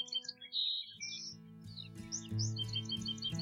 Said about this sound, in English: And then one day, on a drive, I heard a bird song.